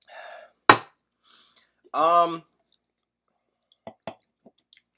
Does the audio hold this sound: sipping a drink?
yes